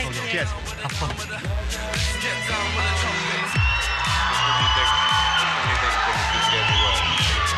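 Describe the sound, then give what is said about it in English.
A crowd cheers and whoops loudly with scattered clapping, a steady roar of voices that swells and holds over a repeating low thumping beat. “And I also want you to notice the audience's response.”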